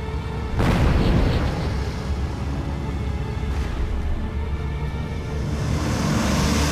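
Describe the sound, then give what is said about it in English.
Two sharp booming bursts of anti-aircraft fire, a few seconds apart, crack over a loud, steady engine drone that rumbles throughout. “Watch out for anti-aircraft fire.”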